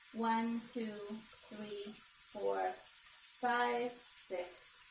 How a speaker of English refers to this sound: You go over to the sink and you turn on the hot water, all right? And we're gonna pretend that this is hot already. Or you can use hot water from a tea kettle, okay? And you put your oil underneath the running water, just about to the count of 10.